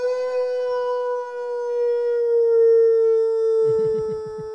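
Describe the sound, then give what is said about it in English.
A man lets out one long, loud, sustained wolf-like howl, holding a steady pitch throughout, with a brief burst of breathy laughter or voice near the end. “All the dogs in the neighborhood about to wake up. The listeners just got so annoyed. They're like, yo. All right, we can move on. Who's this fucking wolf guy?”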